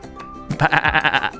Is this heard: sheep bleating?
yes